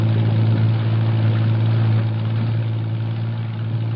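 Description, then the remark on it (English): A patrol boat engine drones steadily on the water at night, a deep humming rumble with a constant low tone that holds for several seconds without a break. “Jeffries, Maros, and I race to the waterfront and pile aboard one of the several patrol boats lined up for the operation. We shove off.”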